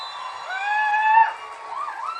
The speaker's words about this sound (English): And they need an immense round of applause for the work that they have done.